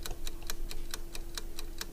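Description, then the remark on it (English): A countdown clock ticks steadily and quickly, about four or five sharp ticks per second, loud, over a faint constant low hum with no voices, as 30 seconds run on the clock for a contestant's turn in a quiz challenge. “It is now your turn to pick a name. 30 seconds on the clock.”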